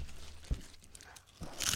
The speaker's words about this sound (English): Wait, final crunch.